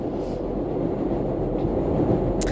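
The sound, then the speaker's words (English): A Chicago elevated Green Line commuter train rumbles past, a steady, loud low-frequency roar with clattering texture throughout, ending in a brief high-pitched screech of wheels on rails. “These Chicago trains, that's the green line.”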